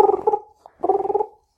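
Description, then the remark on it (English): A voice imitates a British telephone ringing on a call to Zuck: two warbling, trilling bursts of about half a second each, separated by a short pause, fairly loud and buzzy, with no other talk. “He's got a British phone, so it makes that noise.”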